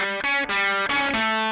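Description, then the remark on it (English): A driven, distorted guitar tone rings out in a few sustained bursts, recorded dry without pedals. A two-track tape machine is manipulated as a tape echo, so the pitch steps and warps between bursts and the wobbling echo smears the notes together. No voices. “Well, a bit of drive, but then the tape echo, which pitches and warps right.”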